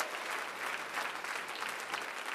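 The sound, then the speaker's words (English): An audience claps for the Lord in dense, steady applause, many overlapping hand claps blending into a continuous wash of sound with no voices standing out. “Let's give the Lord another big hand clap.”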